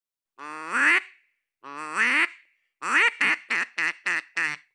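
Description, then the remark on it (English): A duck call instrument blown during an interview, not in a wetland: two drawn-out, buzzy quacks followed by a quick run of five or six short, choppy quacks, loud and clear with no voices. “John Chambers actually brought his trusty duck call instrument to our interview.”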